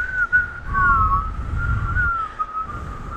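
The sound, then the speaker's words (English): A thin, wavering whistle from a failed attempt at whistling, held for about three seconds, breathy, with rushing air underneath and a pitch that wobbles without ever settling into a clean tune. “Funny story. I can't whistle.”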